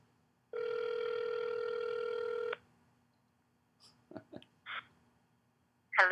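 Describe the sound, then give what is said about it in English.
A single steady ringback tone from an outgoing phone call buzzes for about two seconds, then cuts off, followed by a few short clicks and rustling noises as the line connects. “Oh, do you hear it ringing?”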